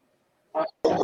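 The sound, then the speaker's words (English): A half pit bull dog barks twice in quick succession at someone outside, a short gruff bark followed by a longer, louder one, with no talking. “My dog is barking here. Half a pit bull.”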